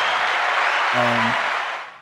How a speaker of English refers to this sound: All right, claps to everybody.